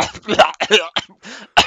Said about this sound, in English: What's that, Dad? You're coughing up too much blood.